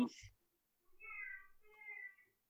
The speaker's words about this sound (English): Meow food. Meow food. I wonder, can the audience hear that? Yes. Is that maybe out of the recording? No, it's always there.